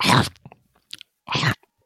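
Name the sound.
crunching snacks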